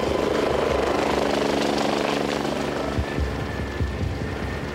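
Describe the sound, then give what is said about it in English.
A life flight medical helicopter roars loudly and steadily, its rotor thumping and engine whining throughout the few seconds, with a few low bumps near the end and no voices; it is airlifting a gravely injured victim. “And I remember being put into the life flight helicopter.”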